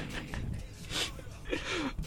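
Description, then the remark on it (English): A person snores in rough, raspy breaths: a low rattling inhale, then two more noisy breaths with a brief rising whistle near the end, moderately loud with no talking. “He's snoring.”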